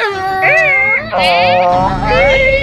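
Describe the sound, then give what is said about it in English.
A voice imitates a horse whinny: three loud, wavering, high-pitched bursts with a shaky, quivering tone, each rising and then falling away, spanning a couple of seconds. “Horse whinny.”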